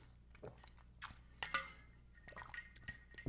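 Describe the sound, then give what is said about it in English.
Someone takes a drink of water, with quiet sipping and swallowing, small wet mouth clicks and a few soft gulps spread over a few seconds, no talking. “We're going to take a drink of water.”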